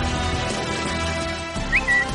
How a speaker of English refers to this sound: That is the tweeting bird that signifies your mail is here. We have a stack of it.